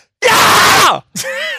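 A person in an office full of people working gives a loud, raw human scream lasting most of a second, strained and noisy, falling in pitch at the end, followed after a short gap by a second, higher wavering cry.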